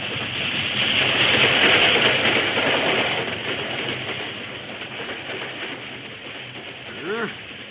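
An express train rushes past, a loud broad roar and rattle that swells quickly, holds, then gradually fades, with a brief rising whistle-like tone near the end.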